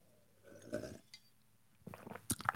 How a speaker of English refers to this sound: Sip of the day. An early one. We got to get it out of the way early today.